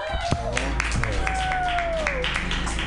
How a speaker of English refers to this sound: Clap it up for the very creepy Ginny Hogan.